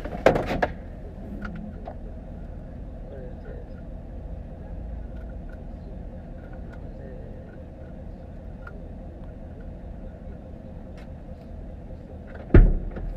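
A truck door clunks open near the start, then after a long stretch of steady low engine hum it slams shut with a sharp thud near the end.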